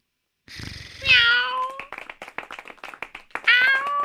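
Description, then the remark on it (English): A person's voice imitates a cat, letting out two drawn-out, convincing meows with a quick run of sharp clicking or tapping between them, fairly loud. “Do the cat. Get Mama Puff's cat to freak out.”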